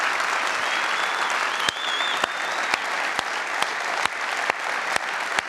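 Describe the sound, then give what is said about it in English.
A crowd at Mission Church applauds the moms on Mother's Day, steadily, a dense wash of many hands clapping, with a few sharper individual claps popping out at irregular intervals and a faint whistle drifting over the top. “And so I just think all of us dudes and everyone else could give a huge round of applause for all the moms of Mission Church.”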